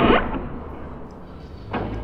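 A heavy door is pulled open: a sharp clunk of the latch, a low rumbling drone underneath, then a second softer thud as it settles, with no voices.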